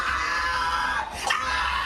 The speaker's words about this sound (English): When the boy doesn't stop crying, one officer screams just inches from his face.